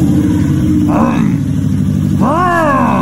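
A man starts his pickup truck: the engine rumbles loudly, then revs twice, each rev rising in pitch before falling back to a steady, throaty idle.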